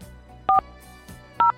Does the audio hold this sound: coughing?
no